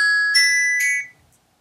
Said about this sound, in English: I'm getting a phone call. Who is it? It's a surprise.